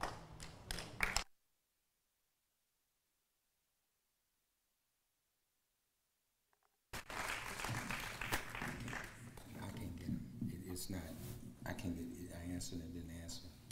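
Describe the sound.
A brief burst of noise, then several seconds of silence, followed by a sustained wash of audience applause lasting to the end, with a murmur of voices mixed in.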